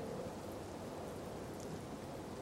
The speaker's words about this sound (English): Now, gentle rain falls from the clouds down onto the mountaintop.